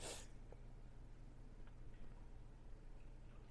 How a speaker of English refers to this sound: If you hear me sniff, it's not tears. It's allergies.